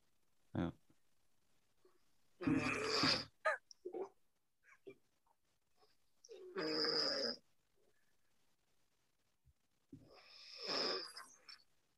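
Three loud snores from a person, played from a video recording, spaced about four seconds apart, each a harsh, rasping honk with a nasal, almost duck-like quality, with faint shuffling noises in the quiet gaps between them.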